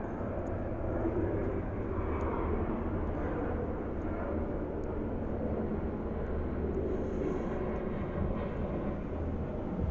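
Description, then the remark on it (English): An aircraft passes with a steady, deep engine roar that holds loud and unbroken for the whole stretch, rumbling mostly in the low range. No voices are heard. “traffic in the air as usual.”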